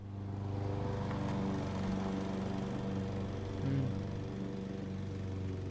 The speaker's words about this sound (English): What's this one? The lawnmower.